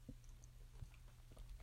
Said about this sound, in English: So, excuse me, I'm drinking, taking a sip of my latte.